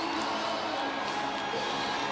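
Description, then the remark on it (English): A huge stadium crowd with an attendance of 75,784 roars and cheers in a dense, sustained wash of noise, steady and loud throughout with scattered whoops rising from the mass of voices. “listen to that crowd right now.”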